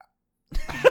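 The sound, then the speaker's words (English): A single short burp breaks the silence halfway through, fairly loud, with a rough, throaty rumble lasting about half a second. “100% a burp.”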